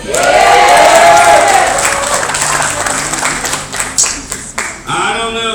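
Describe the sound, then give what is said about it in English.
A loud crowd cheers and applauds, with dense clapping and shouts at the start that gradually thin out. Near the end a voice begins to speak over the fading noise. “If the crowd would have been that way yesterday, the Texas Sackies would have won.”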